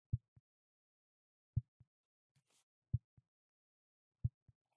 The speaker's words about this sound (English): We're going to leave some of that heartbeat stuff in. That was freaky. That was freaky. That was real weird.